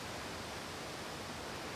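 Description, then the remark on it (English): A steady, low rush of flowing river water carrying spring Sierra snowmelt down the canyons, heard from a home, even and unbroken throughout, soft with no voices or other sounds on top. “We both stand and pause, intently sharing the view and listening for the low, watery rush.”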